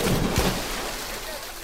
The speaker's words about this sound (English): would you cue up a splash for me?